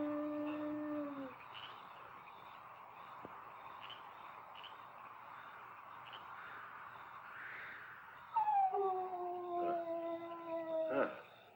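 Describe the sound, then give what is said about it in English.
A dog howls in long, sustained tones, the howl fading out and then returning louder and wavering near the end, with a steady background hiss throughout. “Even my own dog doesn't know me.”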